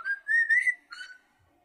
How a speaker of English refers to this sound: What's that? I'm asking you. What whistle? I don't know what it is. I'm scared.